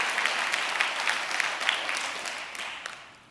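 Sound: audience clapping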